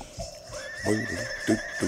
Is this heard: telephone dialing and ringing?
no